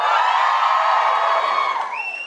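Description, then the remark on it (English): A show audience in Dublin cheers loudly and steadily, those who came to Dublin specially for the show, a dense wash of voices with whoops rising above it, holding for a couple of seconds before one or two high shouts ring out as it fades. “Give us a cheer if you're from not Dublin and have come to Dublin specially for the show.”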